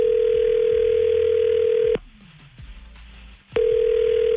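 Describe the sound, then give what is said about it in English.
A phone call placed by radio hosts rings out with a steady electronic ringback tone, one long burst, a short quiet pause, then the next ring starting, heard clearly with no voices. “we're going to call Madison now with you listening on the phone silently”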